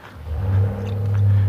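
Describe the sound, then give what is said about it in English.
A pickup truck engine starts up and settles into a deep, steady rumble that grows slightly louder over a second and a half, with no voices over it. “I don't know if you heard that engine start up. It's a pickup truck, and it will probably come cruising past me here in a minute.”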